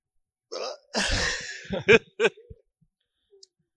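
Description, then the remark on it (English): A person hiccups several times, short sharp vocal jolts following a breathy gasp, fairly loud, with brief pauses between them and no talking. “I got the hiccups. And they're bad.”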